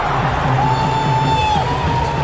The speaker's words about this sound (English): This is an Indian crowd losing it for a bloke from Victoria. Oh my goodness me!